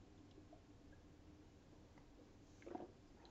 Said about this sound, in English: Just want to take a drink of water there.